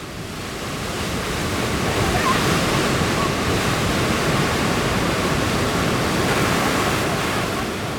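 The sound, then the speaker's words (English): The Qiantang River tidal bore, a wall of water up to 30 feet high, surges toward the riverbanks at Yangguan Town, Haining, Zhejiang province, China, in a continuous, heavy, loud roar, its broad churning rush swelling in and holding steady throughout without any break. “Roaring like a tiger and charging like a warhorse, here comes the world's largest tidal bore, a colossal wall of water rushing toward the riverbanks, reaching astonishing heights of up to 30 feet, as tall as a three-story residential building.”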